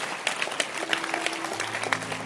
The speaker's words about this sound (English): Let's clap our hands for whoever asked that question. Clap your hands for the person.